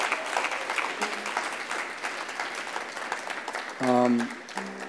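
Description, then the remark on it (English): An audience claps for God at the close of a sermon, a steady, dense, crackling wash of applause, with a short sung or shouted voice rising above it near the end. “Let's clap it up for God.”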